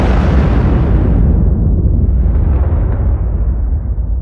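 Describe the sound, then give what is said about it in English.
A loud explosion that keeps roaring as a heavy, deep rumble for several seconds, its hiss thinning slightly partway through. No voices are heard. “In order to give a rocket all the energy it needs, you need something really powerful, like an explosion.”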